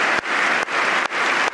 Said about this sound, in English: Thank you. And now Trump's leading the clapping again.